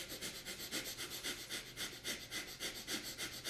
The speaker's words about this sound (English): And if you couldn't hear that, basically he's inhaling and exhaling rapidly. Yeah, rapid fire. Yeah. Rapid fire. In Kundalini yoga, it's quite powerful because you're doing this.